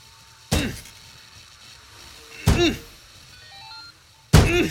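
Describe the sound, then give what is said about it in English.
Three heavy, resonant thumps land roughly two seconds apart, like a shoulder or fist slamming against a jammed car door, each one loud with a short ringing decay. The stuck door belongs to a car that went off the road and is buried in ice and snow. “Door stuck.”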